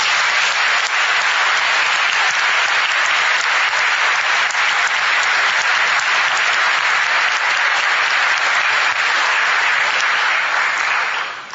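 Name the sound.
audience round of applause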